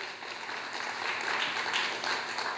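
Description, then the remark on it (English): An audience applauds steadily for a couple of seconds, a dense wash of many hands clapping at once, fairly loud, with no talking over it. “Don't clap just yet because it wasn't as easy as you think.”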